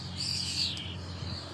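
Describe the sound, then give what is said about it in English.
Birds chirping outdoors, a bright, busy stream of high-pitched tweets and trills that carries on throughout, with a faint low hum underneath and no one speaking. “Those birds. Proper going for it, don't they?”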